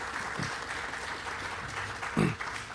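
A crowd at the National Museum of Surface Navy at the Port of Los Angeles applauds the military service members present, clapping steadily in a dense, continuous wash, with a brief louder burst of clapping near the end and no talking over it.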